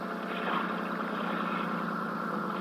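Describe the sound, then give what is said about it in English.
A steady, low mechanical drone of an old, wreck-like boat's engine idling, constant and unbroken throughout, moderately loud with no voices over it. “That must be the boat.”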